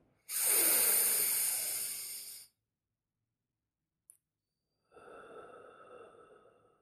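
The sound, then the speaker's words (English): A long, airy inhale, a pause of near silence with a tiny click, then a slower, softer exhale trailing off, as slow deep breathing in a guided breathing exercise. No one speaks. “Take your time, breathing in,”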